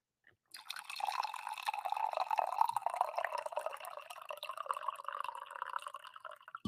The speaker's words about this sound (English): I need to pour some coffee.